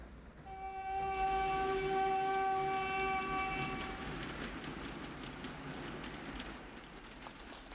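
A train rumbles along the rails, a long horn blast sounding over the first few seconds before the steady rolling clatter continues on its own.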